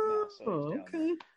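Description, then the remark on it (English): A pet cat meows, two or three drawn-out, wavering calls in quick succession, with a brief higher chirp at the end. “I'm saying my cat's hanging out around.”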